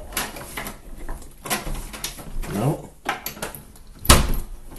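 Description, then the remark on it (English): Rattling and scraping at a home's front door lock as it is opened for trick-or-treaters, a few scattered clicks, then a sharp loud clack near the end as the door comes open, with faint voices in the background. “Apparently, I can't open my own door.”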